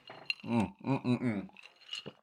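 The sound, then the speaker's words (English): A quick, bright clink of glasses of Jameson whiskey in a toast in San Antonio, followed by a drawn-out voiced murmur and a couple of soft clicks near the end as it is sipped. “Anyway, cheers. And take a little swig real quick.”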